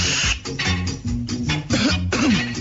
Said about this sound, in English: No, man, this make me cough, man.